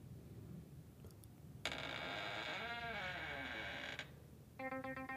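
A back door creaks open with a long, loud, wavering groan lasting a couple of seconds as people sneak in, followed shortly by a quick burst of rattling clicks. No one speaks.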